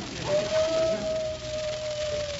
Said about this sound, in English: My wife's calling me. It sounds like a wolf.